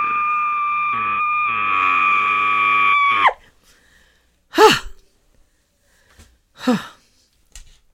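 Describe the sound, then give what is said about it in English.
A sustained, muffled scream held for about three seconds, pressed into a hoodie, ends abruptly. Two sharp, heavy gasping breaths follow, loud, with no talking. “But sometimes when you just want to scream and you don't want anyone to hear, so you get something like a pillow or I've got a hoodie right now, and I'll just go.”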